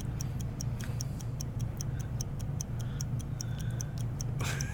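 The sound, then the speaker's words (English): A word-game timer ticks rapidly and steadily, its sharp, bright clicks coming about four times per second over a constant low hum, with no one speaking. “Oh, that timer's going pretty quick.”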